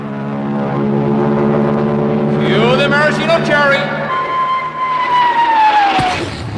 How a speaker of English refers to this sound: Then the Royal Canadian Air Force will fly overhead towing a 10-ton maraschino cherry, which will be dropped into the whipped cream to the cheering of 25,000 extras.